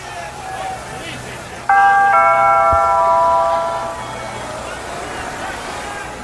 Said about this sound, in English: Do I just let myself in? No. That would be rude. I'll just ring the doorbell.